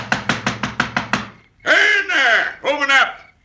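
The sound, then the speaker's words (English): Seven quick, evenly spaced knocks on a wooden door at night, fairly loud, followed by a loud, drawn-out voice calling out after the knocking stops. “Well, who else do you think would be rapping on your door this time of night?”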